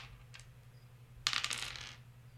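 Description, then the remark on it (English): A quick clatter of polyhedral dice, a D100 roll on a treasure table, tumbling across a hard table, a dense burst of sharp clicks lasting under a second, over a faint steady low hum. “Go ahead and give me a D100.”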